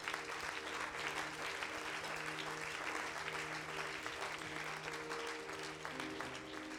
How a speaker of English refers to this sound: Thank You, Jesus. Would you clap your hands to Him right now?